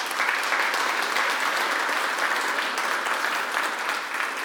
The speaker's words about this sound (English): She loves for people to clap for her, doesn't she